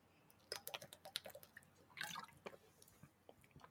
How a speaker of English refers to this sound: Thought you were hitting a bong for a second. I was like, damn. No, that was water. That was me just drinking water, bro.